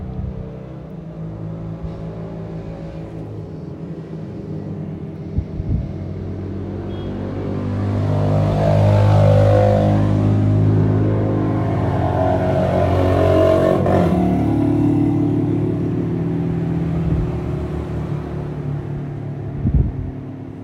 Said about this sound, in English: This is a lot of traffic. It always is.